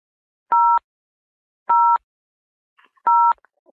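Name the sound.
telephone keypad button tones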